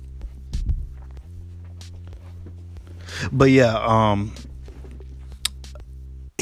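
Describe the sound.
Several soft footsteps tap over a steady low electrical hum, a voice speaks briefly midway, and a sharp knock near the end as a door is closed.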